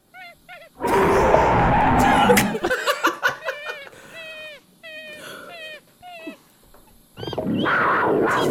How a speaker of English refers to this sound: It was definitely one of those in there. Y'all know I can't deal with a jungle cat.